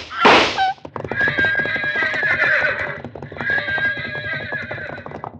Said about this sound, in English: Horses reared at the shots.